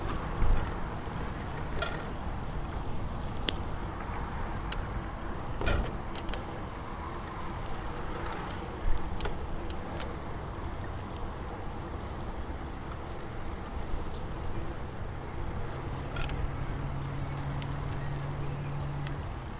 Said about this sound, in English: you are, at best, a bike in a maze that is mostly made up of people on faster bikes, motorcycles, cars, all the city makeup bits.